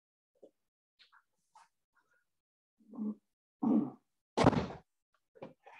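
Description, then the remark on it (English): A door being shut: faint clicks and soft thumps, then two dull thuds and a loud, sharp slam, followed by a quick light rattle. No one speaks. “I'm going to shut my door so that won't interfere.”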